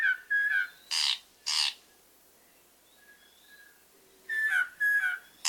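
Kohekohe bird song: clear whistled notes alternate with two harsh, buzzy bursts, then a lull with faint soft notes before another run of whistles and rasping calls. No one speaks.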